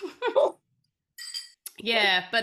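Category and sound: household object, drinking glasses clinking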